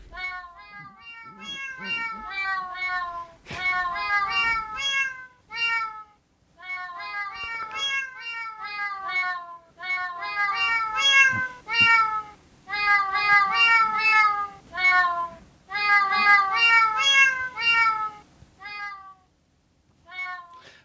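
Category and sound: animal, cat meowing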